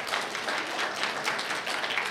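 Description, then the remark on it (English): A crowd applauds for someone's birthday, a dense wash of many hands clapping at once with no clear individual beats, holding an even, moderately loud level throughout. “Yeah, clap for that.”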